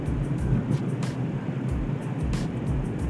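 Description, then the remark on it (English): Steady low rumble of a car taking a snowy highway exit at about 30 miles per hour, with bursts of hissy, splashing noise from tires churning through slush and deep snow, heard from inside the vehicle with no talking. “And yes, in the background, you will hear slushing. You probably will hear wind. Because like I said, I'm doing an episode in the car.”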